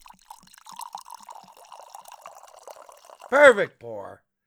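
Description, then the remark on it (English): Whiskey pours into a glass with a soft, steady trickle and light glugging for about three seconds, then a loud, drawn-out vocal exclamation follows. “Ivor, you are fired for that perfect pour”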